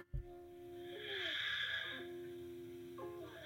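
A man breathes heavily and airily into a microphone for a couple of seconds over sustained, gliding tones of music that begins with a sharp hit. No one speaks.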